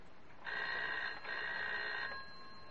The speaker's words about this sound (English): Don't answer it, let it ring.